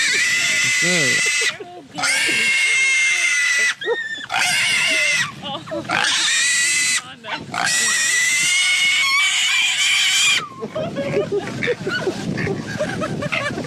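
Loud, shrill pig squeals in several long bursts separated by brief gaps, piercing, followed by a rougher stretch of grunting and scuffling noise near the end.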